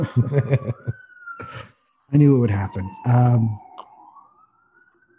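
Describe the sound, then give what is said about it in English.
An emergency vehicle siren wails steadily, its tone slowly sliding as it passes by, while a person talks in short bursts over it. “Oh, sorry, there's a siren going by.”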